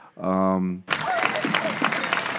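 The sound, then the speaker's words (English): A brief sustained humming tone gives way to a burst of steady, dense applause, many hands clapping loudly at once with a crowd murmur underneath, continuing to the end. “I deserve a clap.”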